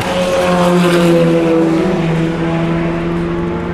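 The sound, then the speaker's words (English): A G-Drive LMP2 race car roars past at high speed, its loud engine whine holding steady harmonic tones that sag slightly in pitch as it goes by, with no talking over it. “There goes the G-Drive Sam Bird car in LMP2.”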